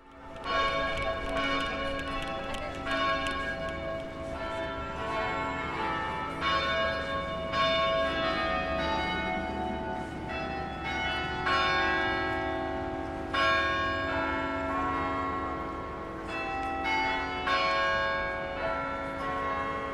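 Church bells of St. Clement's church ring out a steady, tuneful sequence of chimes, each strike overlapping the last's ringing decay, playing a simple nursery-rhyme melody, with no talking.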